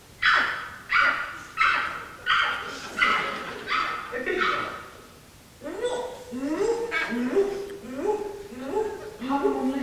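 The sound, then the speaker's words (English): A person imitates a dog barking, letting out a rapid string of loud woofs, then shifting into a quicker run of higher, yelping barks. “Bark like a dog.”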